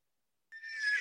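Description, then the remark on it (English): After a moment of silence, a horse's whinny starts abruptly, a bright, shrill neigh that swells louder and keeps going until the end, with no talking. “Do you hear my horses coming, Drew?”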